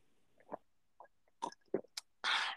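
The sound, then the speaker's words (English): Someone takes a drink of water during a water break: a few soft, irregular gulps and wet swallowing clicks, then a loud, breathy exhale at the end. No one speaks. “Water break. Everyone be quiet.”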